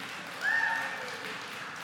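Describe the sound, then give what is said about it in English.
A church audience applauds the people who put on a fun event, in a steady, dense wash of clapping that swells briefly near the start, with a thin high cheer or whistle riding over it, then holds at an even level. “Yes, we can clap for them.”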